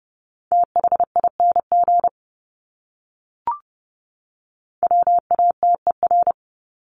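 Morse code tones at 30 wpm sending words from a list of the top 200 words: a steady mid-pitched beep keyed in rapid dots and dashes, sent in two short bursts separated by a pause broken only by a brief click.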